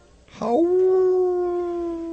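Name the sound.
person imitating a howl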